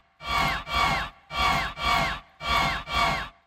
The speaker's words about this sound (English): And so people hear it and you go, why do I feel like there's a crowd going mental? And it's sort of subliminal. It's not, I didn't want it to have it in the levels where it was obvious and overpowering, and certainly not louder than the snare.